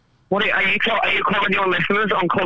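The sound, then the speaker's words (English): Someone on a train talks over a harsh, distorted, low-sample-rate call connection with a tinny, low-fidelity sound, the speech loud, continuous and garbled after a brief silence. “It sounds like you're speaking distorted Morse code at the moment.”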